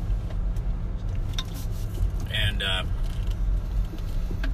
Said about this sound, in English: Sorry, pulling through the Walmart parking lot.